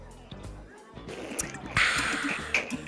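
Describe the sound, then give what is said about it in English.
Water sloshes and splashes in short, uneven bursts as people drink water, growing louder and messier partway through as one spills it everywhere, with faint voices murmuring in the background. “is spilling everywhere”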